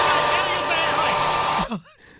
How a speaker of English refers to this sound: So I'm in the hotel, and I have a headache. I'm like, I got to go to sleep. I got to use the hair dryer. Got to use the hair dryer.